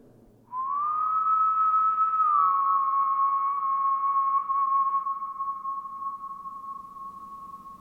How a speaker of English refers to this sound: It sounds otherworldly when you step inside. If I whistle, it sounds like this.